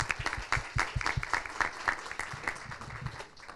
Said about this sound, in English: They are sponsoring the first 3 months of Engage ICT this year, which is a great benefit to us, and let's have a round of applause for them as well.